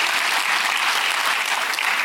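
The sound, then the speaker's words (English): An audience breaks into sustained applause for the Lord, a dense, steady wash of clapping hands with scattered shouts and cheers mixed in, loud and continuous throughout with no talking over it. “Come on, somebody give the Lord a hand clap, a shout, and an amen.”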